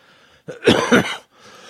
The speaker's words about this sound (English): The second thing I hate is fucking coughing a lot.